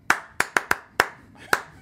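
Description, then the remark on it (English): Six sharp, bright hand claps in an uneven rhythm, a quick run of four followed by two more spaced further apart, each with a short ringing tail and no voices. “Clap. Clap.”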